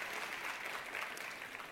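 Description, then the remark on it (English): A small audience claps steadily for a couple of seconds for a filmmaker from White Elephant Studios who came from Austria, a dense, even patter of hand claps at moderate volume with no voices over it. “And he came out all the way from Australia for that little applause.”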